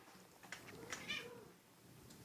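A cat gives a single drawn-out meow, soft, rising and falling in pitch over about half a second, with quiet background noise and no talking.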